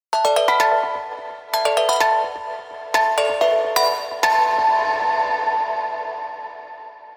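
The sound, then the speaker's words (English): A video game chime for finding the sea lily's bell instrument after a boss fight plays a bright melodic jingle: quick clusters of struck, ringing notes in several bursts, then a long shimmering tone that slowly fades, heard alone. “In the room that the boss was protecting, we find the sea lily's bell.”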